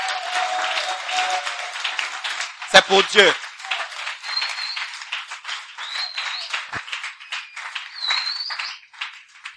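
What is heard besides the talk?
audience applause and cheering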